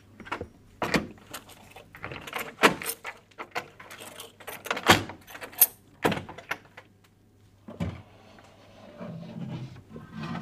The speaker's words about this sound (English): So here you can see we open the doors, double doors, and we have one shelf, two pigeonholes, and what looks like a drawer, but actually is not a drawer.